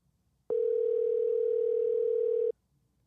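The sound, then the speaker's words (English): A single steady electronic ringing tone from an outgoing phone call to a man's father sounds for about two seconds, clear and even, with only faint background hiss before and after and no voices. “Where are you calling? I was calling my dad.”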